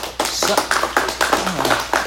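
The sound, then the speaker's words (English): An audience applauds a guest being introduced, with dense, steady clapping for about two seconds, a fairly loud wash of overlapping hand claps with no pause. “I would expect some kind of applause for that.”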